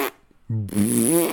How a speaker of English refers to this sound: Hers sound like hers. They're like fucking cartoon farts.